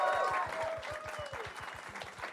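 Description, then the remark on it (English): An audience claps for a guest being introduced, in a dense, continuous wash of applause with a steady rhythmic thumping underneath, and a few high whoops ring out over the clapping. “Keep clapping.”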